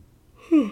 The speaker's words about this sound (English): Sorry, I was yawning.